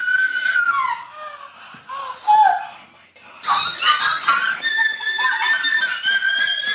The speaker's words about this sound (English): Top 10 most, like, just horrifying orgasms.